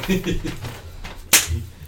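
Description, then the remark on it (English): A single sharp slap across the face cracks out loudly as a woman slaps a man, standing out clearly against a quiet, low murmuring background. “She slaps him.”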